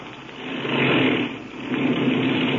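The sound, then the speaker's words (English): A small airplane engine runs at a low, steady taxiing throttle as the plane pulls up under trees, its droning hum swelling slightly and holding for a few seconds. No one speaks. “Then I'll cut the engine.”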